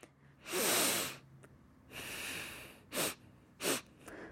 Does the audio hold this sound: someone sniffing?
yes